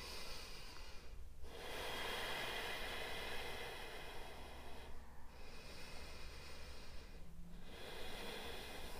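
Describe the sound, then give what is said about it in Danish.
Three slow, deep breaths, loud, taken while holding a balancing pose with one leg raised, each a long airy rush of inhaling and exhaling with a short pause between them. No talking. “Vi tager tre dybe vejrtrækninger.”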